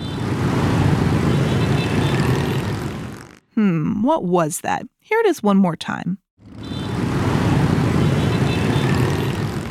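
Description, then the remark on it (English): A dense, steady roar of motorbike traffic on a city street in Ho Chi Minh City, Vietnam, plays for a few seconds, breaks off for a short spoken interlude, then returns just as loud and continuous. “That sound is specifically the motorbikes in Ho Chi Minh, a city in the country of Vietnam.”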